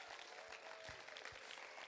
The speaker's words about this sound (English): Why don't you put your hands together for them? Because they are superb.